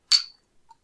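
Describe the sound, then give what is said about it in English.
Glasses clink once in a toast before taking a shot, a bright ringing chime that fades over a few tenths of a second, followed by a faint soft tap. No one speaks. “Before I do, let's take a shot. Cheers.”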